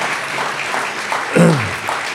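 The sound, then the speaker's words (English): A church audience gives a clap offering, clapping in a steady, dense wash of applause for about two seconds, with a short voice rising above it partway through, like a shout or cheer. “Now give them a clap offering.”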